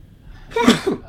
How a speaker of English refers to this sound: Hold on, Johnny. I got to sneeze. It's coming in quick.